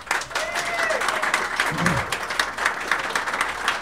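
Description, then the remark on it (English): An audience applauds steadily as the evening's DM is introduced, dense clapping filling the whole stretch at a fairly loud level, with a brief whoop or cheer rising out of it partway through. “Everyone, give a round of applause for our DM for the evening”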